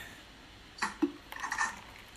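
Glassware clinks, then a short splashy pour of a drink into a glass, lasting about half a second, with no voices.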